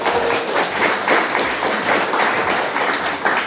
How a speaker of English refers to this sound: So give yourself a round of applause for doing that.